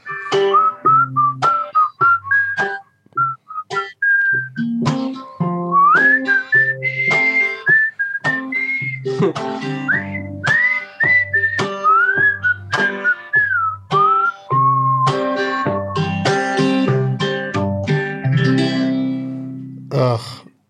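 A person whistles a bright, wavering melody with sliding pitches over a steady backing of rhythmic music, the whistled tune clear and prominent throughout.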